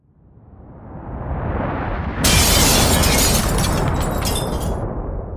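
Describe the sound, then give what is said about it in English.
A deep, swelling rumble builds over a couple of seconds, then a sudden burst of bright crashing and splintering erupts on top, like glass shattering amid a roaring blast, loud and sustained: the Beirut explosion at Warehouse 12, whose shockwave shattered glass doors and windows. “When the shockwave reached Beirut's international airport, roughly 6 miles away, it shattered the glass doors and windows of the terminals.”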